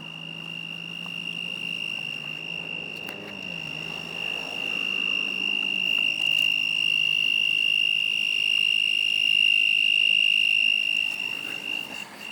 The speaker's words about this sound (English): It's one loud frog or grasshopper, whatever.